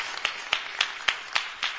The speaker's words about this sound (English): Now, you see, by the time I mention all and the point appear, I think you should clap for them.